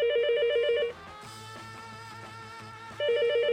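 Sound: telephone ringing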